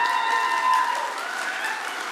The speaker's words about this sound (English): Why don't you give them a big cheer as they come up?